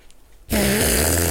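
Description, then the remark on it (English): After a brief quiet moment, a loud, buzzing fart-like noise made with the armpit or elbow pit bursts in suddenly and sputters on for nearly a second, raspy. “What role would I have to, for Baston, have to make to produce the very realistic sound of a fart, either in the armpit or with his, the elbow pit, you know?”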